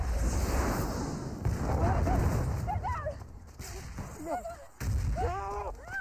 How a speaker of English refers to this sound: Oh, imagine looking at the explosion. It's legit. Something cool.